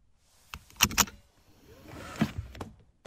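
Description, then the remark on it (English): Car keys are snatched by hand out of a car's ignition, a quick metallic rattle and jingle with a few sharp clicks, then a softer shuffling rustle inside the car. “I instinctively reached out and snatched the keys from the ignition, like I've done at least 7,000 times before, because my assistant has issues around locking us out of the car.”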